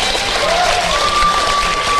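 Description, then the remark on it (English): A studio audience applauds in a dense, steady round of clapping for about two seconds, with a thin whistle rising in pitch and then holding a high note above the claps. “Round of applause to everyone.”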